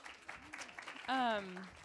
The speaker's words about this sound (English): Yes, go ahead. You can clap.